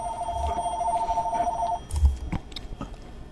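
A house landline telephone rings with a steady electronic trill for almost two seconds, clear, then stops as handling noises and a few soft clicks follow as the phone is picked up.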